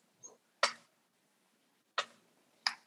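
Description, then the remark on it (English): Three sharp clicks at uneven intervals, like a clock's tick, with a fainter click just before the first. The surroundings are otherwise quiet and no one speaks. “You got your own clock.”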